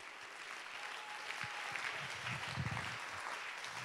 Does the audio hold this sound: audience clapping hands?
yes